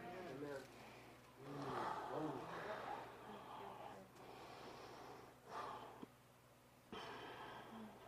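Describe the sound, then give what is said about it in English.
A preacher breathes heavily, taking several loud, gasping breaths with snort-like rasps at uneven intervals as he catches his breath during a sermon, over a steady low background hum. “I had to catch my breath. I don't have anointed breathing just yet.”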